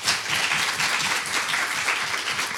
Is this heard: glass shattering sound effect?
no